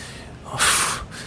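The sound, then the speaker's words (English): A person imitates a man's heavy, angry breathing at a car window with a single loud, forceful snorting exhale through the nose, rising out of quiet and then fading. “And this guy was like breathing heavy, and he was like, oh, fucking...”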